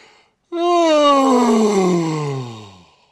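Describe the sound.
A voice performs a long, drawn-out yawn from under a large pillow. It slides downward in pitch with a rough, growling undertone, making it sound eerie and not quite human. It is loud, with no talking.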